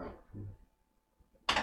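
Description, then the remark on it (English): A door is pushed open: a couple of dull, low wooden thumps, a short quiet pause, then a sharp, bright clack as it swings or latches. “Oh, you just got to push the door.”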